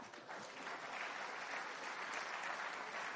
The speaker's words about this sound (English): Clap.